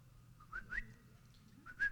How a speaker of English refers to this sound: So I teach my children that when we're in a store, I whistle. I whistle in a store, and my kids are in a store.